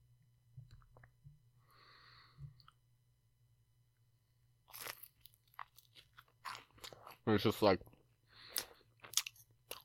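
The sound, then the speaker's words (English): Crunchy chewing of a snack: a run of sharp, irregular crunches filling the second half, mixed with brief speech and a low steady hum underneath. “me chewing isn't gonna bother you”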